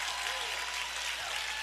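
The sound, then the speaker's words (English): A church audience in Houston applauds steadily for a man who helped start the church, a dense, even wash of many hands clapping at moderate volume with no pauses or swells from start to finish. “Come on, keep clapping until he gets up. He's never gotten this applause.”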